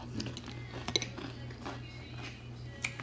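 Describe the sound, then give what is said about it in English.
A spoon clinks against a bowl of Honey Nut Cheerios a few times, bright little ticks scattered over a low steady hum, with one sharper clink standing out near the start and another toward the end. “Got me a good old bowl of Honey Nut Cheerios.”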